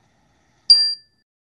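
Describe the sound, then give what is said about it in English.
A single bright strike of a small meditation chime, rung to begin a meditation, rings out clearly on its own, a pure metallic ding with shimmering overtones that fades away quickly in an otherwise silent moment. “We'll begin the meditation with the ring of the chime, and we'll end the meditation with the ring of the chime.”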